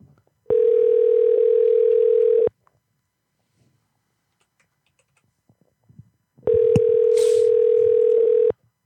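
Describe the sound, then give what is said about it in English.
A steady, loud telephone dial tone while placing a call hums for about two seconds, stops for a quiet gap with faint clicks and taps, then sounds again for another two seconds. “Oh, and I'm putting what's her face on the phone?”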